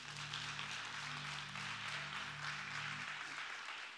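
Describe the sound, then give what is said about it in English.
A church audience claps hands for the word of God in a steady, dense wash of applause for about three seconds, with a low sustained organ-like hum underneath that fades out near the end. “Come on, why don't you clap your hands for the word of God?”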